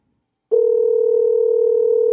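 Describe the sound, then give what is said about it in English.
A steady, continuous telephone dial tone starts abruptly after a brief silence and holds at an even, fairly loud level without interruption until the end, as a phone call is placed to a guest. “So let's get Dave on the phone.”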